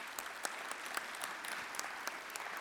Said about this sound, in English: Let's give them a round of applause for their good work.